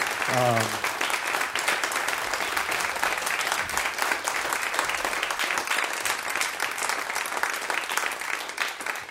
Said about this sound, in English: Can we give them a round of applause for being with us?